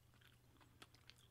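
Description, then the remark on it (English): Someone chews a beach donut rolled in cinnamon sugar, with a couple of soft, gritty crunches over a low steady hum and no talking. “For those that don't know what a beach donut, it's just sugar. It's rolled in sugar.”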